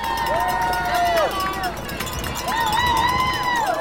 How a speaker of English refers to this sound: From Hawkington to Boylston Street in Boston, the crowds of marathon spectators were large and loud.